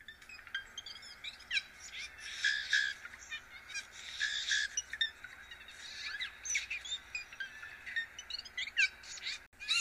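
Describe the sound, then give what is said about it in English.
A blue jay's soft whisper song: a quiet, rambling stream of high chirps, clicks and warbles running continuously for several seconds, with no one talking. “So the first call that you heard is the normal call for blue jays, and the second call was the whisper song, and then the third call is the juvenile bird call.”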